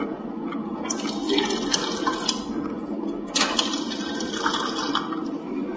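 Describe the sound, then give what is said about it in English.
Steady running water pours from the faucet of a combination toilet and sink, which provides fresh water, into the basin, a continuous splashing rush with small surges, loud with no talking. “There's also water that is provided in this is a combination of toilet and sink, and the sink provides fresh water.”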